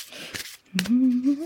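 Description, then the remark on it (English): A deck of cards being shuffled: a soft papery rustle, then two quick crisp snaps, followed by a voice humming a low sustained note. “Let's give these cards a little shuffle.”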